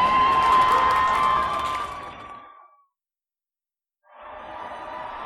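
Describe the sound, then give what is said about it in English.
A crowd cheers and applauds a speaker after he thanks them from a microphone, a dense, roaring wash of noise that gradually fades to silence, then a quieter second wave of clapping and cheering swells back in. “All the crowd begin to cheer and applaud once again.”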